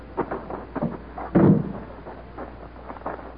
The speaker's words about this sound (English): All right, Cadet. I know you're anxious to see it. I'll open the hangar door.